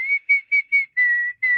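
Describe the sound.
A clear whistled tune of six notes: four short, evenly spaced notes followed by two longer, held tones, bright and steady in pitch with no voices.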